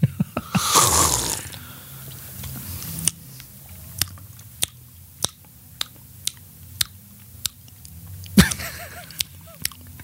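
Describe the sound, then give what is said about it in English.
A noisy slurp of someone sipping a sour apple flavored drink, followed by a steady run of soft clicking gulps and a second brief slurp near the end, with no talking. “just shut up and drink the drink.”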